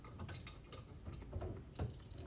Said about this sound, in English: I'm fixing my chair.